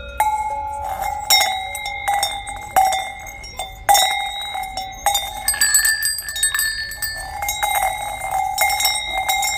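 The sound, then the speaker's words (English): Several cowbells worn by cows in Switzerland clank and ring irregularly, overlapping metallic tones at different pitches, steady throughout. No one speaks. “And please enjoy some cowbell sounds, actual cowbells on cows, and a cuckoo clock that I taped.”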